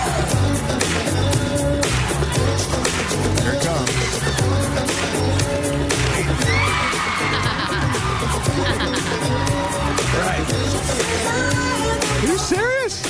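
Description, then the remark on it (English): A concert crowd screams and shrieks continuously as the performer moonwalks on stage, over loud, pounding music with a steady beat, the roar staying dense and unbroken, with a few high wavering yells rising near the end. “the moment where he moonwalks, and I remember the crowd reaction.”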